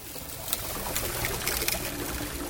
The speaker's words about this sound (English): The juice squeezed from the sugarcane stalks by this mule-powered cane grinder is poured into a 60-gallon iron cauldron